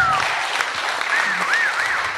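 audience applause

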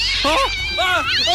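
cats meowing and caterwauling

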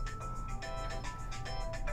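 mobile phone ringtone

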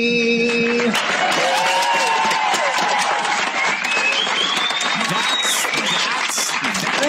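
enthusiastic applause

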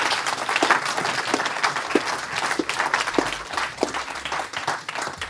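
round of applause

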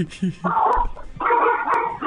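dog barking and yipping

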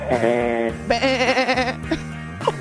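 sheep or goat bleating

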